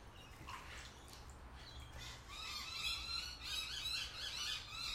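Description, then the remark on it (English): Harsh, squealing myna bird alarm calls ring out repeatedly outdoors in Melbourne, Australia, growing busier and louder in the second half over a low rumbling background; the birds are calling because something is sneaking around. “So that's called a minor bird.”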